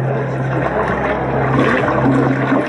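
A toilet flushes with a loud, steady rush of water swirling and draining, sustained throughout, with a low mechanical hum underneath and no voices.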